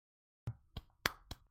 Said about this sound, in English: That's my knee clap.